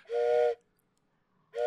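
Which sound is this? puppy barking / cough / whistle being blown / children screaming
whistle being blown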